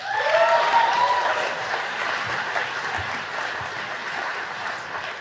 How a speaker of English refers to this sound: And today, I'll be sharing some remarks for our graduating class. So give a round of applause for yourself.